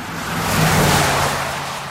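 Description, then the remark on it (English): A fast car speeds past, its engine roar swelling to a peak and easing off over two seconds, with a brief high tire squeal mixed into the rush. “"I'd love to drive Death Valley in a really fast car," a friend of mine said.”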